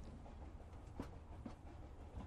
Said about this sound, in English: I don't know where this train is taking me. This train is going to some weird spots. It's not Coney Island. We're not in New York anymore.